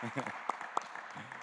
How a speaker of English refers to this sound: Can you give her a clap, please? Because that was... Thank you.